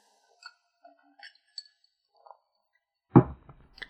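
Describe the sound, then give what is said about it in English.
Soft, scattered glassy clinks and small sips of water from a glass, then a solid thud as the glass is set down, followed by a faint clink. No one speaks. “Gonna take a sip of water now because I just dropped some knowledge on your asses.”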